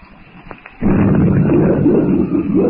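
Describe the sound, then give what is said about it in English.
After a brief quiet moment with a couple of faint knocks, a loud, deep rumble of thunder bursts in and rolls on steadily, heavy and sustained to the end, echoing among the great trees of the African jungle during a downpour. “Thunder rolls and echoes among the great trees of the African jungle.”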